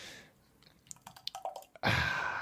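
An extra pale ale is opened and poured into a Glen Affric Brewery glass: a brief fizzy hiss, a few small clicks and drips, then a loud, steady gush of foaming liquid. No one speaks.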